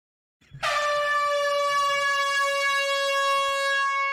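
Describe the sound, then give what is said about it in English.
A single loud, sustained air horn blast with a harsh, buzzy tone blares for several seconds without letting up, after a brief rustle at the start. “It's a fucking air horn.”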